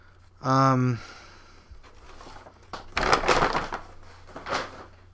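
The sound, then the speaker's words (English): A squishy rubber animal toy being squeezed: one short, loud, buzzy squeak, followed by softer scrunching, crackly squishes in a couple of bursts. “It's brown and it's very squishy. I don't know if you can hear the squishing.”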